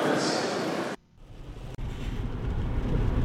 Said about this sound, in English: Okay, I'm back. It was only a little brief bit of heavy rain there for a second or two.